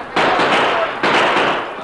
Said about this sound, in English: There were several shots, but Tonto and the Lone Ranger, carrying Joe on his horse, got out of the line of fire beyond a building.